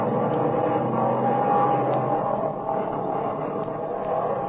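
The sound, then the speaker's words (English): A vintage airplane's propeller engine drones steadily and evenly, a dense, continuous mechanical hum with a faint rhythmic flutter and occasional light high ticks, without pauses or voices. “That engine's talking now like a lady sewing circle.”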